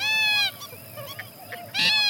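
Two loud, harsh honking calls from a purple gallinule, each about half a second, one at the start and one at the end, separated by a quieter stretch of soft background sounds.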